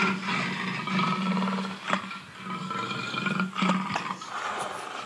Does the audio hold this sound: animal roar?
yes